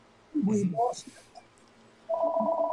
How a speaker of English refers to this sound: Look at that. At 4 o'clock. I don't answer that phone. Oh, that's my customer call. It'll ring 3 more times. Okay. Two more. I don't want to answer.